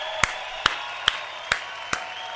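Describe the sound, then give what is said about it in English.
Five sharp, evenly spaced claps from an audience ring out at a steady beat over a constant background hum, with no voices. “Stand up for that at least. Clap your hands.”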